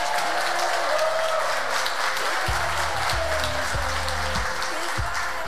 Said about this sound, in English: This is our Life for Kids. Round of applause.